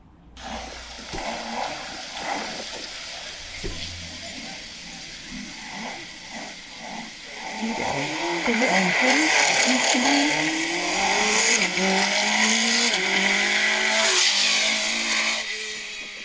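An Ariel Atom V8 sports car, run by people from Ariel at the BMM's Gaydon gathering, roars past, its loud engine note climbing and sweeping through the revs, with a brief, clipped downshift blip right at the end. No one speaks.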